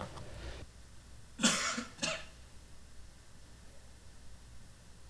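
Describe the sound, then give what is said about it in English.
Two quick coughs in a row, somewhat muffled and set back from the microphone, over a steady low hiss with no one talking. “I have learned not to cough into the microphone.”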